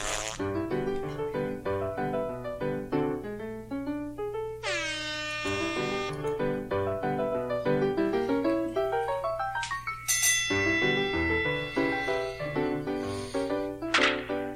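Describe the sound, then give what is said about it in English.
A bright double bell ding rings out over busy, upbeat electronic music in a show intro, its clear metallic tone cutting through the layered synth melody and lingering briefly, like the bell that signals the start of a boxing round. “I always try to, like, do my finger with the bell, but I always forget that it's, like, a double bell.”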